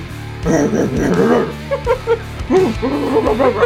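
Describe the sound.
A person imitates a dog, voicing a dog character during a tabletop role-playing game, making a string of short yipping barks and whiny whimpers in quick, uneven bursts that are fairly loud and fill the few seconds.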